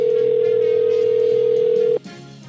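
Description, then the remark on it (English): A telephone call tone rings out as one steady, mid-pitched hum, held loud and unbroken for about two seconds before cutting off abruptly, leaving faint line noise. “All right, let's ring Andy Pohl and see what he's up to tonight.”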